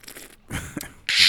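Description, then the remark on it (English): A gurgling sip from a nearly empty drink: a soft rattly slurp, a brief pause, a couple of wet gulps, then a loud, hissy gurgling rush at the end. “Sound like gurgling.”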